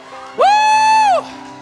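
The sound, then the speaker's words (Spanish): A loud, high-pitched cheering shout rises sharply, holds steady for nearly a second, then falls away, standing out above a low, steady background murmur from the audience. “Grita, grita, grita.”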